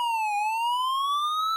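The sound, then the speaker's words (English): A police siren passing outside wails steadily, its tone dipping briefly and then slowly climbing again in one continuous sweep, heard alone with no one talking. “The siren, specifically?”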